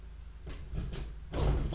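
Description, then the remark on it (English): A door being moved, heard as a few rumbling, scraping pushes that build to a louder final slide, with no voices. “Who moved the door?”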